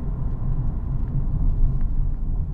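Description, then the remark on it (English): A steady, heavy low rumble of road traffic fills the whole stretch, dense and unbroken at an even loudness, with no voices over it. “And there's fucking so much traffic still.”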